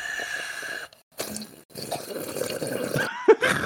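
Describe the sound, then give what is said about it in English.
Water gushes from a tap into a bucket, a steady splashing rush that stops briefly, then resumes with a louder, fuller pour. “All right, let me turn the tap.”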